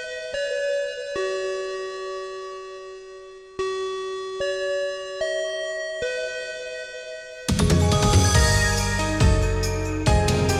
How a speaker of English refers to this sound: Let's close out this meeting. Let's ring that bell.